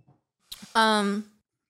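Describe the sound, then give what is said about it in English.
A single drawn-out "beep" voiced by a person, mimicking an electronic device's tone; one fairly loud utterance with a short consonant burst before it, then silence. “Who's sleeping on the beeper? Beep. It beeped.”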